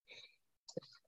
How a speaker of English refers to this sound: Bless you. Excuse me. Boy, that came out of nowhere. Sorry about that.